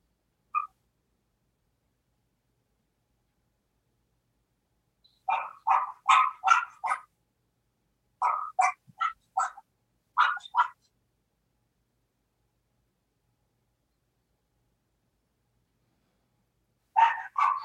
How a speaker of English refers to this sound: Can you hear that noise? I hear some barking.